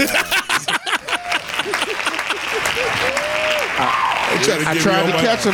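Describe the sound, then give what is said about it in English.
Loud, rapid hand claps from several people, sharp and irregular at first, then blending into a steady patter of applause with voices calling out over it. “Hand claps.”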